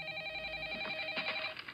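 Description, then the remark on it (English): A phone ringtone for incoming calls plays on its own, a bright electronic melody of sustained tones ringing out steadily at moderate volume for a couple of seconds. “You're playing the ringtone that's on when your someone, phone when someone calls me.”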